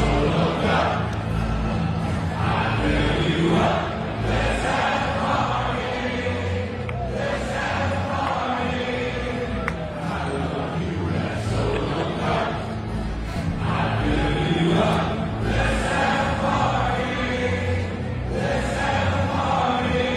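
A large arena crowd sings along loudly to a song, many voices blending into a steady, echoing roar that stays dense and full from start to finish.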